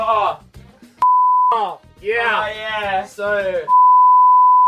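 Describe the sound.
A steady, loud censor bleep tone cuts in twice over someone speaking, first for about half a second, then holding for a full second at the end after the voice resumes between them.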